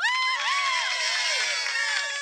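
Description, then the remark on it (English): A crowd cheering sound effect, selectable for announcements in an app: many voices cheer, shout and whoop together for a couple of seconds in a loud, steady burst of excitement that holds level from start to finish. “That was cheer.”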